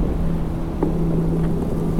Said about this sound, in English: Pretty windy up here. 5,000 feet, snowing. On top of, what's the name of this mountain? This is Unaka Mountain, 5,100 feet, snow coming down, can't see anything. It is cold up here, it's gotta be less than 20.